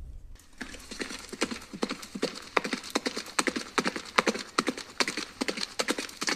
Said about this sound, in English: Here is a regular horse gallop.